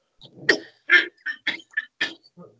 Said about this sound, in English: You're going to have to excuse me one sec while I cough.